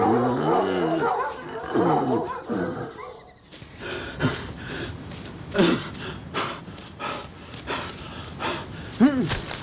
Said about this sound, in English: Slow down, Moloch. Hold the dogs in check.